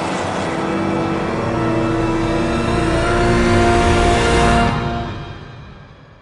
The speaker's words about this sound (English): Batman can only watch as the Joker walks away, gets back into the armored car with his ghoulish thugs, and drives away.